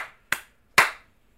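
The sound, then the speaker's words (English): Sharp, percussive hand slaps and a finger snap ring out in quick succession: the tail of one at the start, then two crisp hits, the second louder, each fading quickly. No talking. “So, how many slaps do you give it? And snaps.”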